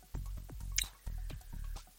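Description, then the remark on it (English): Wet, slurping liquid sounds repeat in an irregular rhythm, like an animal lapping water from a trough, each lick a soft splashy squish with small drips between. “Get like lapping up water,”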